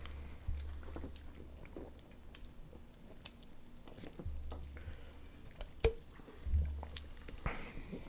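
Wet gulping and swallowing as several people drink cold beer down at the same time, with scattered mouth clicks and soft squishy sounds over a low hum, and no talking.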